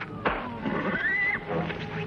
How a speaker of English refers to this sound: The horses, they're getting away. I'll get them.